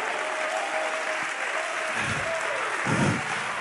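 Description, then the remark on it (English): An audience claps hands in a dense, continuous wash of applause, steady and fairly loud throughout, with a faint sustained tone and brief low thumps underneath. “Come on, come on, clap your hands, all ye people, and shout unto God with the voice of triumph.”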